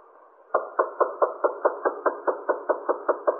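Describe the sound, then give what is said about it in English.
A steady series of about thirteen firm knocks on a wooden apartment door, evenly spaced, with no voices. “Oh, that won't do you any good. I've been trying that since yesterday afternoon.”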